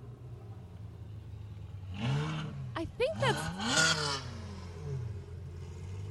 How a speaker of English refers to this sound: A lot of Mustangs going very fast down this road.